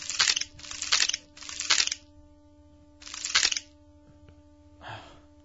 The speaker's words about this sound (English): Just chewing. With little teeth grinding.